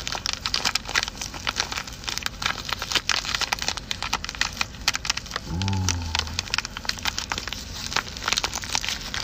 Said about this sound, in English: Smoke a little bit more. Let's open up my weed bag.